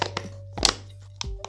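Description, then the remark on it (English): A plastic water bottle is squeezed, giving a few sharp crinkling crunches and thunks, the loudest burst in the middle, over a low steady hum with no talking. “It's literally a water bottle. It's a fucking plastic bottle.”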